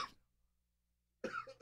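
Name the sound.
coughing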